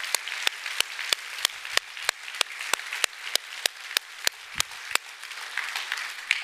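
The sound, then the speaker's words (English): A church audience at Antioch applauds steadily for several seconds for all the pastors of the church, a dense wash of clapping punctuated by a few sharp, evenly spaced louder claps, with no talking over it. “Can we clap for all the pastors in our church?”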